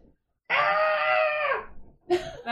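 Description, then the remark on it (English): A voice lets out a long, strained, wavering scream lasting about a second, then starts a second scream after a brief pause. It is a person imitating screaming, heard through a stethoscope held up to a microphone, loud, with no talking. “Instead of a heartbeat, you just hear screams when you put a stethoscope to her.”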